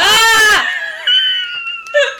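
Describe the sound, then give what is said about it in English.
A storyteller imitates a character's scream at the climax of a spooky tale: a loud, harmonic shriek for about half a second, then a thinner, high-pitched wail that trails on, with another short sharp burst near the end. “and it says, at this point, the storyteller stops, and if he has finished, as if he has finished, then someone usually asks, why did Rupert scream?”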